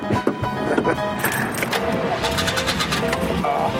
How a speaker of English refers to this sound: Listen to that engine. What was that? Oh, nothing. I just have to get used to clutch. Sounds like your U-joint went out.